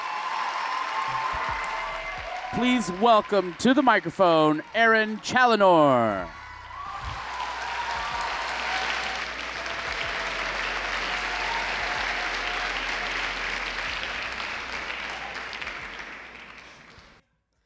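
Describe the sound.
A poetry slam audience applauds a poet steadily, dense clapping under a man's amplified announcement at first, then continuing loud and sustained on its own for about ten seconds before cutting off.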